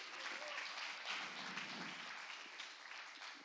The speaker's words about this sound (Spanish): Un aplauso a estos actores.